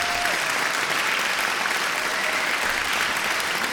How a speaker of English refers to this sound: Hand claps.